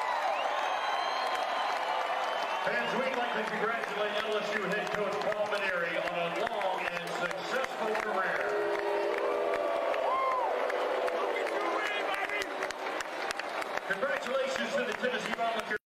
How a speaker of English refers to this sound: There are boos that are loud, but there are not all boos. There is still clapping continuing.